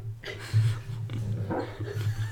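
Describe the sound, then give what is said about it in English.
A dog makes muffled, low whimpering and whining noises while dreaming in its sleep, a steady run of soft strained sounds lasting a couple of seconds, with no one talking. “Puppy dreams. Puppy dreams. Oh. He's making noises.”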